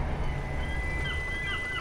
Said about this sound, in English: A seagull. This is perfect.